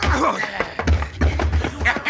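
Several heavy, dull punches land in quick, uneven succession, each a sharp thud over a steady low rumble, in a brief fistfight in which a man is knocked out cold.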